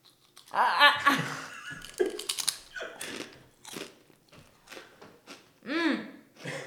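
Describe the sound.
Loud crunching of a crisp truffle and sea salt kettle potato chip being chewed, with several sharp bursts in uneven rhythm, mixed with brief murmuring voices.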